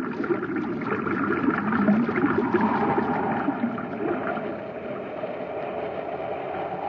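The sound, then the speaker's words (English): Reversed pumps force water in through a pipe into a shaft in a steady, loud churning rush over a low mechanical drone, continuous for the whole stretch with no voices. “That pipe isn't drawing water out, it's forcing it in. Someone reversed the pumps.”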